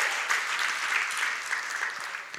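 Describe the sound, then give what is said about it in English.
An audience claps together in a steady, dense wash of applause, many hands blending into a continuous bright patter that holds at an even, moderate loudness throughout, with no voices over it. “Come on, clap about it. Clap. Come on, clap. Clap, clap.”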